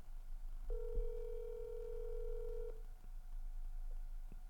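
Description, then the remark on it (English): A phone line gives a single steady ringing tone lasting about two seconds, clear, followed by a low line hiss and a few faint clicks, with no one speaking. “Probably someone answers.”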